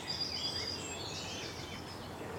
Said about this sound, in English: There might be a blackcap and a garden warbler here. The longer-winded scratch here. It's the garden warbler. Yeah.